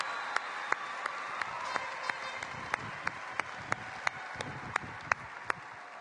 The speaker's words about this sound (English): if you're one of the 5,411 students seated in this arena tonight, that means that you're in the top 2% of all students across this country. And you deserve a tremendous round of applause.